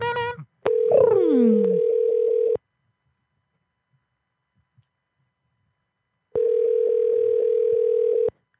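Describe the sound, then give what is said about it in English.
A telephone rings out unanswered: two long, steady, buzzy ringback tones with a long silent gap between them, a brief voice and a falling whine at the start. “I wish that bitch would answer too.”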